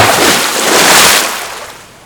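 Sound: stormy ocean waves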